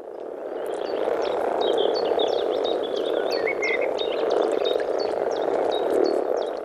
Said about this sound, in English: They're calling out for the females who join them in the water. This throaty rumbling might not get the hearts of female listeners beating any faster, but if you're a common frog, it's like a siren call.